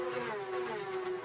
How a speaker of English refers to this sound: Start of the lap. Quickly into turn two and onto Lakeshore Boulevard. Wind the cars up to terminal velocity.